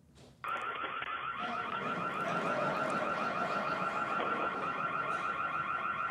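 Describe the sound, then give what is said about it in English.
A home security alarm in Kansas City blares suddenly after a brief quiet moment as a midday thief tries to take a package, a loud, continuous electronic wail with a rapidly warbling pitch that holds steady for several seconds. “Well, the Kansas City police released some video of one midday thief who got cold feet when the alarm went off as he attempted to take the package.”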